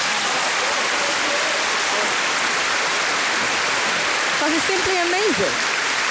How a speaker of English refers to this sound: And I think we all need to give ourselves a huge round of applause.